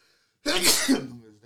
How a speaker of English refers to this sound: Bless you.